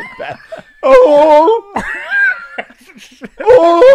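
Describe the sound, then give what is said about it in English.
A dog howls in three loud, drawn-out bursts, each wavering up and down in pitch with short pauses between them. “My dog's speaking in tongues of his other ancestors that are different breeds.”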